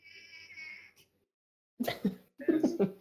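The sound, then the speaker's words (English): A cat gives a drawn-out, high-pitched whine, then falls silent briefly before a few short, strained, throaty vocal bursts follow in quick succession, as the cat is being squeezed. “My cat deserves some treats after being squeezed like that.”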